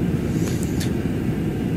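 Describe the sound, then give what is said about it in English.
A steady, low droning rumble of jet engines heard from inside an airplane cabin in flight, about 30 minutes into the flight, with a couple of faint brief clicks or rustles over the constant hum. “But it's been about 30 minutes that we've been on this plane now.”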